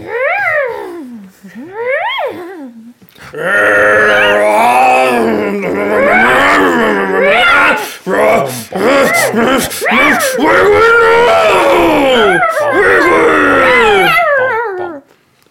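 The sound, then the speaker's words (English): A person voices ogre yells and growls: two short rising howls, then a long, loud stretch of strained roaring and groaning that swoops up and down in pitch, with brief gasping breaks. “Okay, so we need ogre yells and thrashes include ogre sounds until ogre is captured.”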